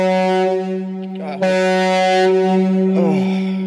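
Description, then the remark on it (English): A loud, deep horn blares continuously for several seconds like a ship's horn, its steady droning tone overlaid by brief bursts of rushing noise. “It does sound like a ship, doesn't it?”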